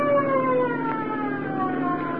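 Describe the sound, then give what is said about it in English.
A police boat siren wails steadily, its sustained tones gliding slowly downward in pitch at a constant moderate loudness, with no talking over it. “Here comes a police boat.”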